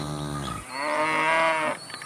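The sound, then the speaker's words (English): A single cow moos loudly, a long, drawn-out low call that rises into a strained, harmonic bellow before trailing off, with no talking. “They used the property as a vacation retreat, but the main purpose is to raise their own cows.”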